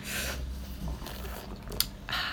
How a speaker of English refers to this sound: And coffee that we can slurp. Oh, yes. Coffee slurping.